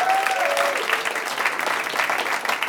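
A crowd applauds steadily, a dense wash of many hands clapping at an even level throughout, with a brief whistle-like tone sliding downward near the start.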